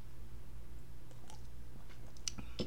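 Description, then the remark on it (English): Soft mouth sounds of someone taking a sip of White Claw hard seltzer from a can, a few wet clicks and a brief slurp over a low steady hum, with no talking. “So I went, sorry, my allergies are really bad, and hopefully a sip of White Claw will help them.”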